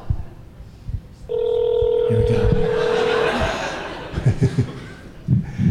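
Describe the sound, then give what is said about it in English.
A telephone keypad tone from dialing a phone number to Canada sounds loud, held steadily for about two seconds, while people chuckle and murmur around it, with scattered laughter continuing after it stops. “We're just learning how to work phones.”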